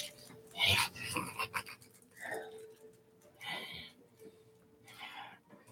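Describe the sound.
A handful of short, raspy dog-like barks come at irregular intervals, mixed with wheezy, whimpering breaths in between; moderately loud, with no talking.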